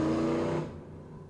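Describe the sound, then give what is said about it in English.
A pickup truck's engine roars loudly with a steady droning tone, then quickly fades as it speeds away, leaving a low rumble behind. “This guy's coming to kill us. He's going to blow his fucking suspension out here.”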